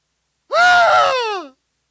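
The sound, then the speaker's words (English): A preacher imitates an anguished cry: one loud, drawn-out male wail lasting about a second, rising then sliding down in pitch, alone with no other sound around it. “And but from one moment of feeling like that, from one moment of shouting the victory, they went to crying out.”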